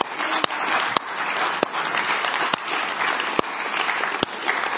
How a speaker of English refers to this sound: And your church deserves a round of applause for not being afraid. Amen.